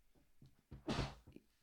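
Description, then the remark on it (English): A single sneeze into a sleeve: a few soft catching breaths, then one loud, sharp, hissy burst lasting a fraction of a second, with no talking. “Look at you sneezing in your sleeve.”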